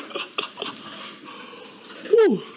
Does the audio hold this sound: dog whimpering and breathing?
yes